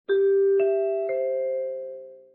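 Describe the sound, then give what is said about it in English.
The three-note NBC network chimes ring out one after another in a quick, even sequence before Saturday Night's Main Event, each bell-like tone overlapping the last and sustaining into a long, clear, fading ring. No talking. “Let's hear those NBC chimes and get on with Saturday night's main event.”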